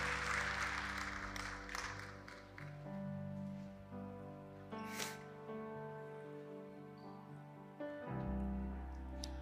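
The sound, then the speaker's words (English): A crowd at a church service claps together for Jesus, for those who accepted him: a dense burst of applause, loudest at the start, that thins over several seconds, with steady sustained organ-like tones underneath throughout. “Could we clap our hands to Jesus for everybody that accepted him?”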